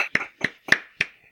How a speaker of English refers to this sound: And we're here to give the Shinobi Awards. The Shinobi Awards is here. Round of applause.